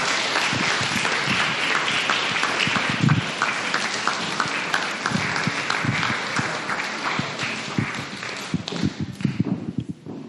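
A crowd claps steadily, a dense wash of many hands with a few sharper claps standing out, continuing for around ten seconds before starting to thin at the end.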